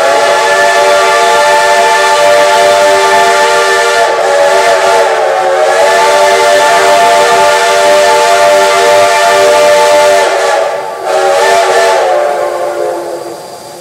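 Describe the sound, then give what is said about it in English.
A loud, sustained steam train whistle blows for over ten seconds, its harmonic chord wavering slightly, with a broad hiss of escaping steam underneath and a brief dip near the end. “Now, do you have my train? Do you have it this time?”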